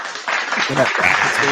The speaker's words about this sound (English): can you give him a round of applause, please? Can you give him a round of applause?